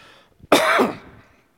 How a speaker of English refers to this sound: I'm still dealing with the cough from last week.